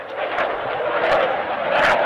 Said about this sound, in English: The friendly exchange interrupted by the ominous sounds of a fighter jet.